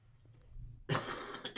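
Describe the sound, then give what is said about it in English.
A single sneeze bursts out after a quiet, low murmur: a sudden, loud, breathy blast of noise that lingers briefly before trailing off. “Bless you.”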